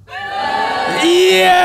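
A crowd boos together in a loud, sustained wave of overlapping voices. It swells after the first second and holds steady with no clear words.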